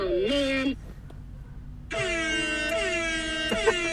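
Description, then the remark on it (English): Loud, blaring air horn blasts: a short one under a second long, a brief pause, then a longer sustained blast lasting about two seconds, harsh. “This is all air horn things.”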